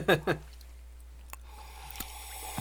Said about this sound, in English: I'm trying the strong sip method to see if it changes the flavor. You need to aerate the coffee.